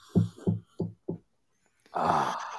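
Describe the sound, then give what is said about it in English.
Four dull, evenly spaced, solid knocks on a door, followed after a short pause by a louder, muffled rushing sound. “Is that just a knock on the door?”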